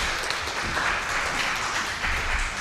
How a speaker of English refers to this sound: Give these guys, all of these guys, a big round of applause.